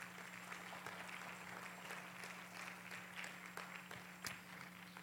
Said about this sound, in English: Y'all give them one more round of applause if you would.